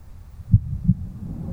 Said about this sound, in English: You can feel her small, leathery, cold hand in yours, and you can hear your own heartbeat.